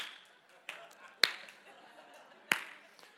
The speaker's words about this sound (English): It started off as a golf clap, but it picked up a little momentum there. Yeah. See, the problem with being the lone clapper, it almost sounds like the sarcastic clap if no one else joins in.